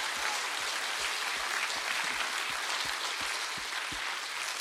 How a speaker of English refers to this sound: Why don't you give the Lord a hand clap of praise this morning?